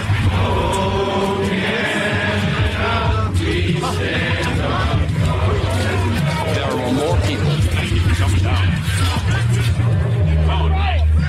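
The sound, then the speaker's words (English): A large crowd of protesters near trucks in Canada makes loud, continuous noise in response to a court order to move the trucks, with many overlapping voices shouting and cheering, while long, deep horn blasts sound in the background. “When the order went out to move the trucks, a court order, this is what it sounded like after the order to move the trucks came out, the court order. This is how the people responded.”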